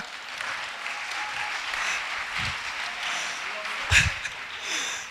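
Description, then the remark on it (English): A crowd applauds the interpreter steadily for about five seconds, a dense hiss of many hands clapping at moderate volume, with a brief louder burst near the end. “Clap for my interpreter.”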